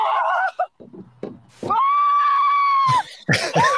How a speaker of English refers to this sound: Dude, the screaming gets me every time. It's a giant.